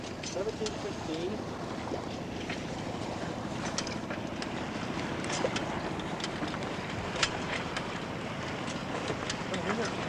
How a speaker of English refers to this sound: This boat just coming up on our stern.